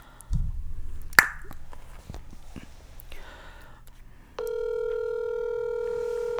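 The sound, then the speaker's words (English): A few soft clicks and handling noises, then a steady, loud electronic phone keypad tone holds evenly for about two seconds as someone dials a phone call. “I started panicking when you called someone.”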